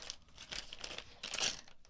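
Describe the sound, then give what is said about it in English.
Gift wrapping paper is torn and crinkled open, a run of dry, papery rips and crumples in uneven bursts with no talking, loudest near the end. “So this one also has a questionable wrap job. But okay.”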